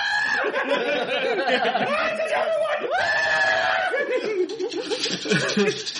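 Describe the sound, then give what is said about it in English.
A person lets out loud, strained, wavering screams in quick bursts, bleating like a screaming goat, with laughter mixed in. “This is not, stop screaming. Stop screaming. It's like one of the screaming goats for a second.”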